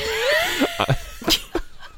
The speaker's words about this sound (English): Oh my gosh, stop. I'm not yawning, I'm coughing.